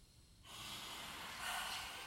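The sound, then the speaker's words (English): A deliberate yoga lion breath: a steady breathy inhale through the nose rolls straight into a louder, forceful open-mouthed exhale with the tongue sticking out, hissing out strongly before fading off, with no talking. “We'll breathe in through the nose and we'll breathe out through the mouth, sticking out the tongue, like breathing some fire.”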